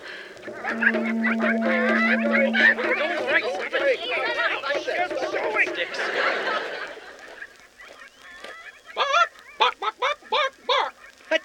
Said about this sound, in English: Lots of chickens. In a Roman Colosseum? Oh, my.